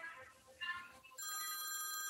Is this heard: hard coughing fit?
no